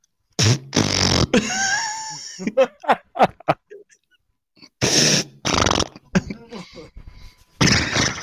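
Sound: voice imitating a fart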